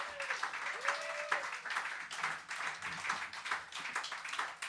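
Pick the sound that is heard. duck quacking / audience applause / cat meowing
audience applause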